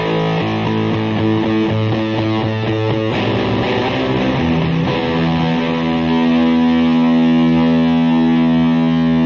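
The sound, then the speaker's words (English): A heavily distorted electric guitar played through a Behringer Distortion pedal plays loud, crunchy chords and riffs with thick, saturated sustain, ringing out steadily with no talking over it. “This is the Behringer. It's right here. And again, we're giving this pedal away next Saturday night. Behringer Distortion.”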